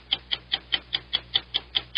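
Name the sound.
ticking game clock countdown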